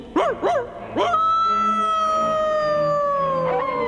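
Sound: wolf howl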